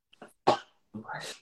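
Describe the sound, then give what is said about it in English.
A single sneeze bursts out sharply after a quick catch of breath, followed by a brief voiced trailing sound, fairly loud and clear against a quiet background. “Bless you.”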